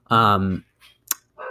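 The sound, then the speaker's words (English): A dog lets out one loud bark lasting about half a second, followed by a sharp click and some fainter scattered noises. “my dog is going crazy”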